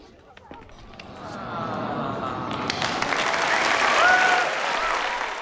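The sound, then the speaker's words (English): Audience applause swells from scattered claps into a dense, sustained roar of clapping, loud, with a few faint whistles riding on top near the end. “Wouldn't you love people to applaud your love, Crow?”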